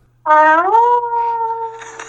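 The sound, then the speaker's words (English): A woman imitates a quiet wolf howl for the hosts of a British morning show, with one long, steady vocal tone that slides upward at the start, then holds level for almost two seconds, with no talking. “Now, she went on a British morning show the other day and gave the hosts a quiet wolf howl.”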